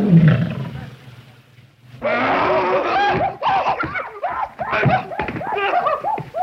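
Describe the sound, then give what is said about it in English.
The MGM lion roar sound effect of Leo the Lion opens low and rumbling, then swells into a loud series of snarling, growling bursts that keep rising and falling for several seconds. “I mean, Hal Roach movies never looked cheap, especially when they were being distributed by MGM and there was a nice cash flow from Leo the Lion.”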